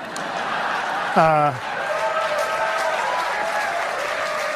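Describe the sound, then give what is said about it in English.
Steady audience applause, given in response to a remark about people being excited over the legalization of pot, fills the whole stretch. It is a dense wash of many hands clapping, with a short, loud falling whoop rising above it early on before the clapping carries on evenly. “And then if you can roll it back to right before, like he says, what causes the applause, you notice that he says, there's probably a lot of people who are very upset today.”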